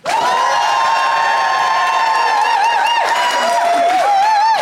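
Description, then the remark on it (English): A studio audience applauds loudly and steadily to vote for the side they think is in the right, with high cheers and whoops rising and falling above the dense clapping for nearly five seconds. “If you think Andrew and Ben, and therefore Hannah, is in the right, applaud now.”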